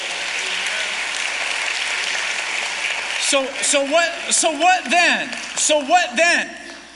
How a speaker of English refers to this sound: Give them a big round of applause, will you?